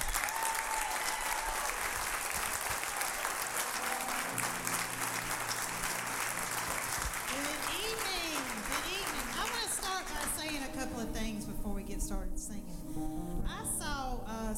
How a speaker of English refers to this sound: I need y'all to do me a big favor. I need you to reach way down deep, okay, and get your best clap. Okay, you got it? And I want to introduce the McCall PH Praise and Worship Team, folks.